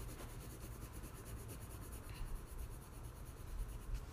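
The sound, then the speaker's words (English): Soft, steady rubbing of thin paper over a pencil drawing to shade it, a continuous quiet scratchy swish that goes on for a few seconds, with no talking. “And then I'm gonna get a thin paper stuff and just shade that all up.”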